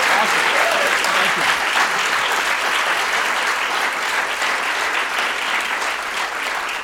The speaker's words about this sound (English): Let's hear a big round of applause for this brilliant, brilliant gentleman. Thank you. Thank you very much.